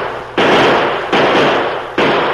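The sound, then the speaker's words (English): Three loud, sharp gunshots ring out at uneven intervals, each a sudden crack that decays into a hissing tail, in a radio drama with no voices over them. “at least we got a chance to dodge some of that lead.”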